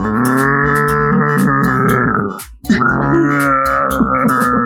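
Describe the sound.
A person's voice imitates a camel's grunt: two long, loud, guttural groaning rumbles, separated by a brief breath-like break, with no ordinary speech.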